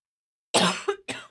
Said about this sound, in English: I'm having a coughing attack here. Hold on. Okay, can you cut that out?